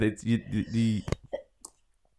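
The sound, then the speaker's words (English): A single sharp sneeze bursts out right after a stretch of voiced, speech-like sound, then a few faint clicks and breaths as things go quiet. “Bless you.”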